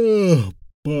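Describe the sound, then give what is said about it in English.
A man's drawn-out yawn voiced as a groan, sliding downward in pitch before trailing off into a brief silence, then a voice picks up again. “"Oh, no," Mike yawned.”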